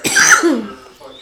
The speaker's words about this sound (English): We gotta get you something, bro. You need to figure out why you cough so bad. It's disgusting.